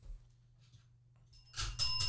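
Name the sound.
bell being rung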